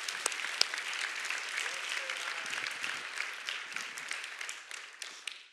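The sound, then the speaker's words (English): An audience at a morning Christian church service applauds steadily, a dense wash of many hands clapping at once with a few sharper claps standing out, sustained throughout without any talking. “Clap your hands one more time this morning.”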